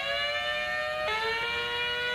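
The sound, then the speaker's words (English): A strange-sounding doorbell: a steady, buzzy electronic tone rich in overtones that abruptly steps down in pitch partway through and holds, with no voices. “a strange-sounding doorbell, although I did like my initial answer with the auto-tuned ambulance.”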